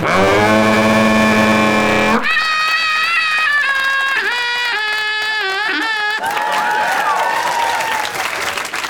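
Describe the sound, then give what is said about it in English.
A voice imitates a sheep bleating at the Edinburgh Festival: about four long, loud, quavering bleats in a row, the pitch wobbling and shifting between them, with hardly any pause. “Was a sheep.”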